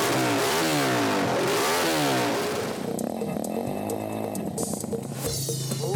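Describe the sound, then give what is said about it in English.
A small engine on a motorized toilet built as a four-wheeler revs loudly, its pitch sweeping up and down in repeated surges before settling into a rough, pulsing idle, with no talking. “So basically, it's a motorcycle that they. It's basically what that is, right? No, it's a four wheeler. It's a toilet.”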